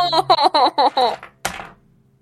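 Rapid clattering bursts of several small dice tumbling across a hard surface, rolled for a saving throw in a tabletop role-playing game, followed by one sharp impact that rattles briefly before settling into quiet.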